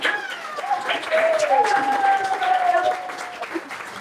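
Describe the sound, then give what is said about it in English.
A crowd applauds Allegra Spender on a Sunday afternoon, steadily for several seconds, a dense wash of clapping with high cheers and whistle-like tones gliding above it, fairly loud throughout. “Would you please give an enormous round of applause, make a lot of noise for Allegra Spender?”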